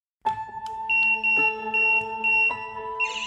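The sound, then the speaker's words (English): A hospital ward alarm sounds at a motionless boy's bedside: a loud, sustained electronic tone chord with a high-pitched beep pulsing repeatedly on top, continuing steadily with no voices. “This was when he sounded the alarm.”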